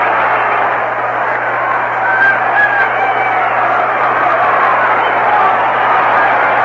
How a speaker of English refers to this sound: All right, this crowd going wild again, picking up where they left off Sunday.